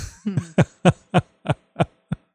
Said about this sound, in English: And I just want to mention real quick here, we all here at the Jeep Talk Show hope that your dog gets feeling better very, very soon. A really nasty cough there in the background.